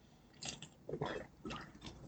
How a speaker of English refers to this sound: first of all, let me get another sip here.